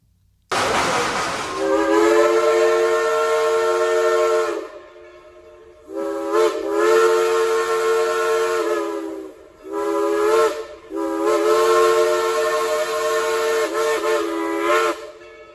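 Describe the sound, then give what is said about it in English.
A steam locomotive whistle at Dollywood sounds in four long, chord-like blasts with brief gaps between them, loud and sustained, with a reverberant tail as it echoes off the mountains around the valley. “So I'll play the horn or the whistle in this, and you can kind of hear the, you definitely hear the difference in the pitch, but listen to it as it just bounces off the mountains.”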